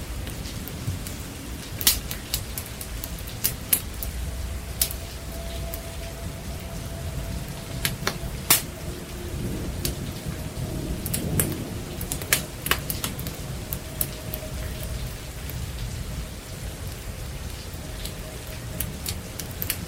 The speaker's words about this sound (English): The storm seems to be letting up.